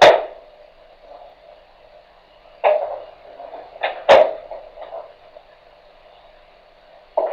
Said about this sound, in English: Yeah, you know, it sounded like somebody just knocking on something and all this movement going on. It didn't sound like, you know, something that a raccoon would do or anything like that.